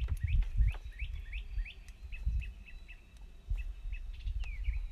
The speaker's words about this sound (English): It's really like weird bird sounds.